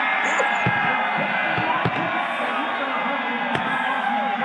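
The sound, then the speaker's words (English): A woman shotgunning a beer amid a loud, steady crowd roar, with a few sharp cracks and pops standing out over the constant chatter and cheering of many voices. “That, of course, is Kyle Larson's wife shotgunning a beer if you're watching it on MAV TV.”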